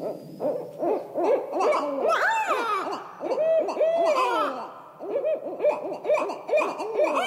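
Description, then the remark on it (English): Two barred owls call back and forth territorially in a loud, overlapping chorus of hoots, cackles and rising-falling wails, continuous, with no talking. “The calling you're hearing now is from a couple of barred owls, and they're being territorial.”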